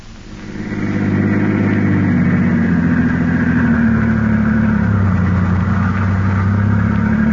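A car engine hums steadily and fairly loud as Garrett's car drives along the West Side Highway with two men inside and Peters at the wheel, swelling up in the first second and then holding a constant low drone with no voices.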